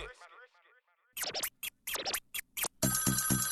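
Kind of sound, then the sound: signal or alarm, phone ringtone ringing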